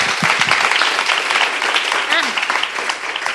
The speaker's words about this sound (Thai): โอเคนะคะสุดยอดมากปรบมือด้วยนะคะ